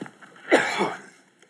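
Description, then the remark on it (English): A short, harsh cough in two quick bursts, the first sharper and louder, the second trailing off, with no speech around it. “I'm sorry I'm coughing, y'all.”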